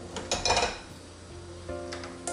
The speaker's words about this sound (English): Alright, so while I'm running them under the water, I'm gonna go ahead and put the pan on.